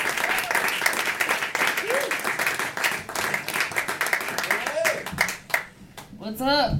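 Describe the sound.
A comedy show audience in Portland applauds steadily as a comedian from L.A. is introduced, with dense, continuous clapping and a few whoops, then the clapping thins out as a voice begins speaking near the end.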